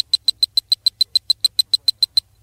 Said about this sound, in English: You will know it is time to turn the page when you hear the communicator beep like this.